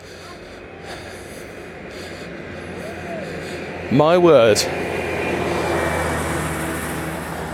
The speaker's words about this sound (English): That was a gritter lorry. So obviously tonight, they're not very hopeful for a frost-free evening.